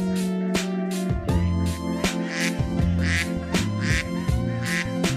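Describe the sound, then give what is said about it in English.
Repeated nasal, quacking bird calls sound in quick bursts, fairly loud, over a steady tonal background with a shifting low hum; no one speaks. “Laughing at birds.”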